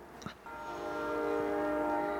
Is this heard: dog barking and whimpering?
no